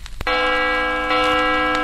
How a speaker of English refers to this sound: Stop! Stop ringing me bell!